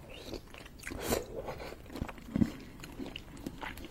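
Mouth sounds of someone eating and swallowing: irregular crunchy bites and wet chewing at a steady, unhurried pace, with a couple of louder crunches standing out. No talking is heard.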